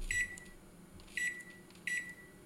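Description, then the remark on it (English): A microwave oven beeps three times at a steady pace, each short, bright electronic tone ringing clearly over a low running hum, with no one speaking. “I should say microwave.”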